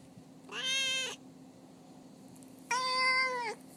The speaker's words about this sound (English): now we're gonna have Duarte's corner, and I'm gonna briefly turn this over to my cat, Duarte. He's very opinionated, and here's what he thinks about Theodore Boone, Kid Lawyer.